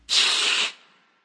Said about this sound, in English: And with that hiss, we will be back next week with another episode.